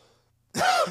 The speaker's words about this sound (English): Sorry, the woo always makes me cough. Hits me in that spot.